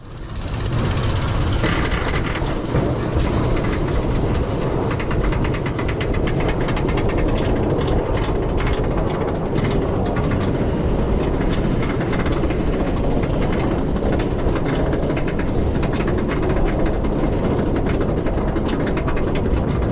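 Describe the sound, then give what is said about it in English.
A roller coaster climbing a chain lift, metal plates on its multiple cars rolling over hundreds of anti-rollback pieces and clanking in a rapid, continuous rattle over a heavy mechanical rumble, loud for the full stretch with no talking. “When you apply that to multiple cars with multiple metal plates rolling over hundreds of anti-rollback pieces, it sounds a little something like this.”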